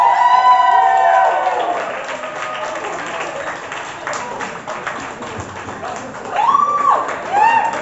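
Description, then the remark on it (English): An audience at a poetry slam applauds a poet steadily, with dense clapping throughout and loud whoops and cheers rising at the start and again near the end. “Applaud the poet. Keep that applause going.”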